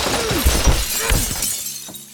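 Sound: glass window shattering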